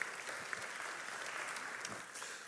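An audience applauds in a steady, dense wash of clapping that holds at an even level throughout, with a few sharper individual claps standing out and no one speaking over it.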